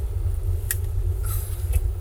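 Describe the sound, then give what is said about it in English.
Steady low rumble of Sydney city road traffic on a Monday, with a couple of brief sharper noises and a short high squeal passing over it; no one talks. “And now we got the lovely Sydney traffic just to take us home on this beautiful Monday.”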